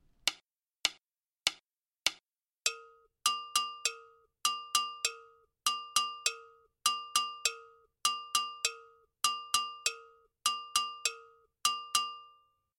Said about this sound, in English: The gongkogui incorporates a muted tone achieved by playing the low bell, then muting the open end of the bell against the player's leg. The high tones in this part are open bell tones.